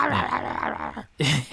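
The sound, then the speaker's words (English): A person imitates a snarling zombie dog: a rough, drawn-out vocal growl lasting about a second, a brief pause, then a harsher bark-like burst, fairly loud. “They bark and go mental.”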